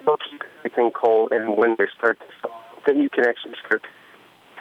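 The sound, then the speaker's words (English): A man talks over a thin, narrowband cell phone line, his voice steady but tinny, with the connection sounding slightly choppy as the call starts to break up from a weak signal. “you're breaking up on us. Are you on a cell phone?”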